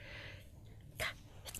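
A quick, sharp sneeze bursts out in an otherwise quiet moment, followed shortly by a brief second breathy burst; no one is talking.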